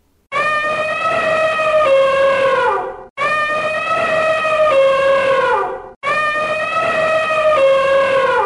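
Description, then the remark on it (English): An elephant trumpets three times in a row, each call a loud, brassy, sustained blare lasting a few seconds and sliding slightly downward in pitch at the end, with brief gaps and no talking. “It's an elephant!”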